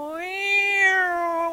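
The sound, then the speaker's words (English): A single voice imitates a police car siren with one long, steady wail that swells slightly and then sinks gently, fairly loud, with no talking around it. “That's a police car noise, not a cat.”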